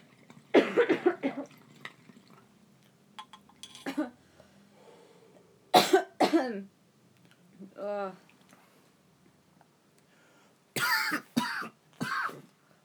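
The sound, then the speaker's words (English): A coughing fit after a bong hit: several bursts of harsh, hacking coughs in clusters, loud, separated by pauses, with a strained, hoarse vocal groan midway. “You say that and I cough like a bitch.”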